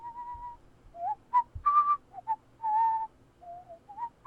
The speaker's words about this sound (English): You can now hear a person whistling. Drag your finger toward the sound until you hear a click.